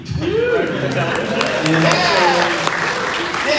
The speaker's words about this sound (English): Clap for me!